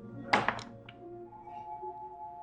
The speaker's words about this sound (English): Go get it. Roll a d20.